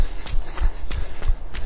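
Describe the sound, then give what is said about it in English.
A horse's hooves clip-clop at a steady walking pace as a runner passes it, about four or five even thuds with sharp clicks, moderately loud against a soft outdoor background. “Pass the horse.”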